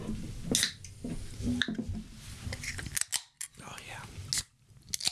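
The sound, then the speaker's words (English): A can of Liquid Death sparkling water is cracked open: sharp metallic clicks and a brief hissing burst of escaping fizz, with handling noises and faint voices murmuring in the background. “Our second sponsor. We're going to open it up on...”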